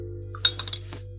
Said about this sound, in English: Check this out. I'm going to drop each one in these glasses of cold seltzer water and watch what happens for 30 seconds.